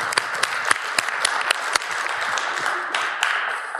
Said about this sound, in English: Folks, give everyone a round of applause there.